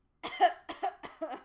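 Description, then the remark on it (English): A quick series of three or four coughs in a row, each a sharp, raspy burst with a short voiced tail, moderately loud, with no talking. “Wait, coughing is your secret weapon?”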